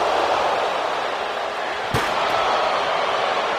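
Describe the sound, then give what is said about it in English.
In a wrestling video game, a single heavy slam of a wrestler hit with a neckbreaker onto a chair on a concrete floor rings out midway, sharp, over a constant roaring crowd, followed by a faint second knock. “Oh, and a neck breaker on the chair, on the concrete floor.”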